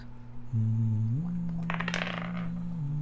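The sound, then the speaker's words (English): A quick rattling clatter of dice tumbling across a hard tabletop and landing on a natural 1, lasting about half a second, over a steady low electrical hum. “That is a nat 1. Okay, I'll take that from you. Oh, you can reroll. I'm not using that dice again.”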